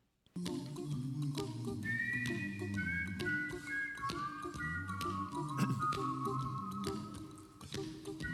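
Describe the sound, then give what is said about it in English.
A clear, bright whistled melody of a 1988 pop song glides through a catchy, bouncy tune, carried over a steady low rhythmic backing of hums and finger-snap-like taps, with no talking. “That song was being played on the radio all the time back in 88, and then you've probably whistled or you've at least heard this tune.”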